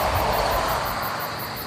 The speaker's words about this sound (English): So, I'm just gonna sit out here for a while with the crickets and whichever truck driver is awake at 3 in the morning.